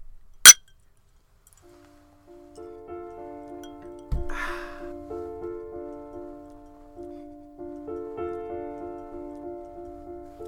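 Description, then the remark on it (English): A single bright clink of glasses touching in a toast with Dingle gin and tonics made with elderflower tonic water, followed by a brief silence, then melodic music with a steady, pulsing rhythm begins and continues; no one speaks. “Yeah, so go to Ireland, go to the Dingle Peninsula and get a Dingle gin and tonic with elderflower tonic water from Fever Tree. I highly recommend it. So good. So cheers.”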